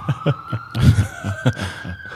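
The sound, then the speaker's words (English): A police car siren passing on a street holds a long, steady wail that slowly climbs in pitch, with regular low thumping pulses beneath it and no one talking. “Damn, it's the longest fucking siren ever.”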